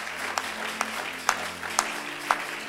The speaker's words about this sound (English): Give the Lord a mighty clap of praise.